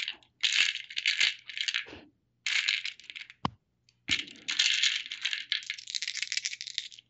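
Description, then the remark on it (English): Three eight-sided dice rattle and clatter in bursts, shaken and rolled to generate starting money, with a sharp click in between and a longer stretch of tumbling rattling at the end; no voices. “Now, I'm going to roll a D... 3d8, generate each of you how much monies you start with.”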